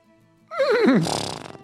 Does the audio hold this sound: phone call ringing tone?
no